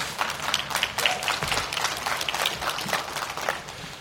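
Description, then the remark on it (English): An audience in San Diego claps together, many hands producing a dense, steady patter of applause that holds at an even level for several seconds without any voices. “Yeah, that's a clapping point in San Diego.”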